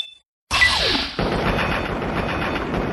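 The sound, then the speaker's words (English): A sharp burst of video game assault rifle fire, from a higher-damage variant of the assault rifle, erupts after a brief silence, followed by a dense, sustained roar of rapid gunfire and crashing noise with no talking. “I think it's it is definitely delivering on its promise of better damage than the regular assault rifle.”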